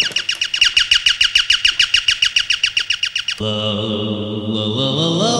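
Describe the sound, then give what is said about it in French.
Birdsong from a toy sound box, played by pressing on the box: a fast, steady run of bright, repeated chirps, loud, then cuts abruptly to a sustained buzzing, droning tone. No one speaks. “Des chants d'oiseaux dans une boîte, regarde.”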